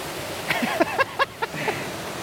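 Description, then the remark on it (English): Steady rushing water, like a creek flowing, makes a continuous hiss throughout, with a few short voiced sounds rising briefly above it in the middle. “I'm gonna come right here so you can see the water behind you.”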